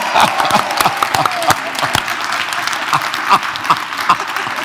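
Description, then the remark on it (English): An audience claps steadily for children, a dense patter of many hands with a few sharper individual claps standing out, sustained and fairly loud throughout with no voices over it. “Let's applaud these children, okay?”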